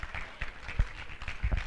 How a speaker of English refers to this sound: Would you take about 30 seconds and worship Him and just praise Him and give Him a hand clap and a shout? I sense Him this morning.